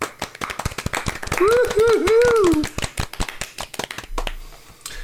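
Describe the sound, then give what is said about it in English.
A short round of applause: quick, irregular hand claps for about five seconds, with a voice briefly whooping over the middle of it. “Let's just have a small, short round of applause for the winner of the Joe Biden Memorial Holodeck Award for Longest Stroke Lifetime Achievement Award, Jordan Peterson.”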